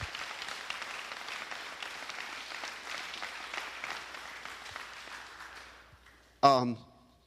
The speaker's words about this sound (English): Let's all give them applause. Everybody was involved.